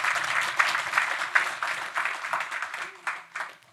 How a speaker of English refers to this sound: Why don't we give her a warm clap of encouragement?